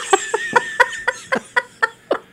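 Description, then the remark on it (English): A chicken clucks in a steady run of about nine short, sharp bursts, fairly loud, with no talking over it. “Come here, baby, I want to see your earlobe.”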